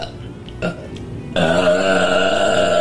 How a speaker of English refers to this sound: She's literally burping in her girlfriend's face.